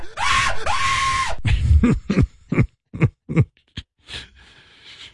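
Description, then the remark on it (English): A voice imitates the screaming of a man who slipped on mud and fell, with two long, strained wails up front followed by a string of shorter, choppy vocal yelps and grunts, loud. “You imagine, like, the yelling? That must have been unbelievable.”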